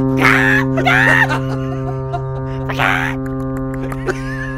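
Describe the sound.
A person clucks like a chicken: two quick squawky, pitched vocal bursts, a pause, then one more, all over a steady low electrical hum. The first part is the clucking and the rest is imitated pecking.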